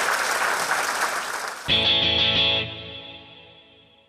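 A crowd claps and cheers loudly for under two seconds, then is abruptly cut off by a short burst of distorted, effects-heavy music that rings out and fades.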